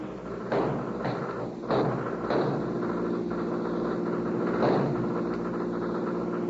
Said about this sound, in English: Then, when they are 18 miles away from Petaluma, the convict's car takes a turn too sharply. The car skids. The law is within range.